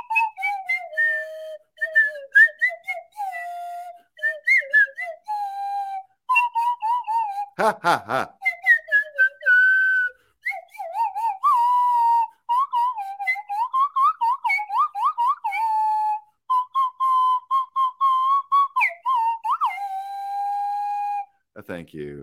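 Someone whistles the tune of Jingle Bells, a clear, fairly loud melody of short repeated notes and held tones, with a brief breathy noise partway through and no talking.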